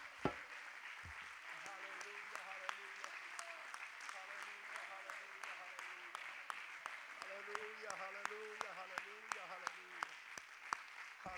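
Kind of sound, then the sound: crowd, audience clapping hands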